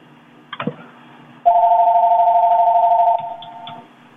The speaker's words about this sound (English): Do you answer that phone? That's real annoying.